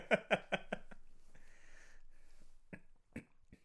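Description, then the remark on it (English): Someone sips a drink: a few quick wet, breathy pulls, a drawn-out airy slurp, then two short swallowing sounds, with no talking. “Gotta go in for another sip.”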